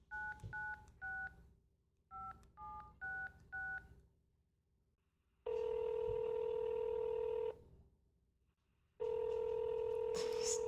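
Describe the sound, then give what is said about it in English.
A quick run of touch-tone keypad beeps dialing a number for an outgoing phone call, two bursts of short dual-pitch tones, followed by two long steady ringback tones separated by silence. “she'll probably screen her calls and not answer when she sees my number on the caller ID.”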